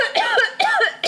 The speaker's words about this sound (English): is coughing again. You're not supposed to make me laugh.